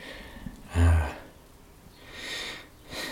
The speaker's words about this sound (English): It always starts with breathing.